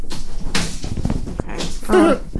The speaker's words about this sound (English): They're moving that couch.